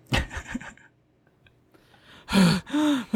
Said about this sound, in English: I can't tell if it's me breathing or her breathing.